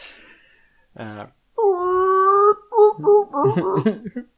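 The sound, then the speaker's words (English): A person imitates a Sand People war cry: a brief rough grunt, then a loud, sustained braying howl that breaks into choppy, warbling yelps and gurgles. “That's a good Sand People impression.”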